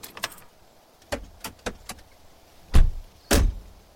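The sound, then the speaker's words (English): A car pulls to the side of a single-lane road by a white building and parks half in the grass: a few quick mechanical clicks and clunks, followed by two heavier, louder thuds, with no one speaking. “I pulled to the side and parked half in the grass.”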